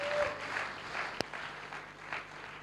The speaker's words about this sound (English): let's give the Lord a clap, and thank him for what he's done.